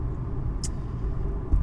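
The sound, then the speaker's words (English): Steady low engine rumble from inside a car cruising north on a highway in Michigan, about 40 miles from I-75, in light traffic on a chilly, overcast day of about 58 degrees with no rain. Constant road noise, a brief hiss partway through and a heavier thump near the end. “And although the weather is chilly, it's about 58 degrees, it's overcast, no rain though, traffic is light. We're about, 40 miles away from I-75, that great black snake of a road”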